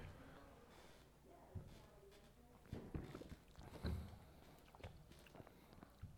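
sipping beer

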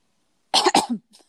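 coughing

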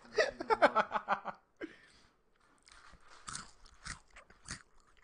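crunching

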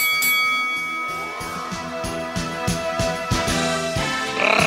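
boxing ring bell ringing

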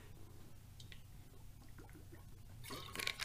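drinking water

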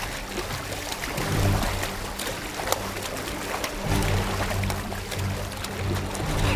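water splashing

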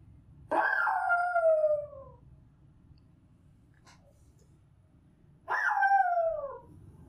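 dog barking

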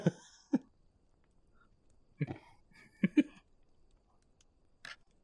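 throat clearing

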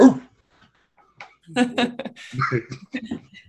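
dog whimpering

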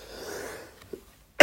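cough

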